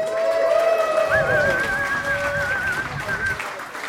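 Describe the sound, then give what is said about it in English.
A live crowd in Philadelphia cheers and whistles for a few seconds, with a steady wash of applause and voices beneath a long, wavering whistle rising over the noise. “Are you ready, Philadelphia? Oh, what a lovely, lovely crowd.”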